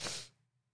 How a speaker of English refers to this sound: I'm always sneezing on these podcasts.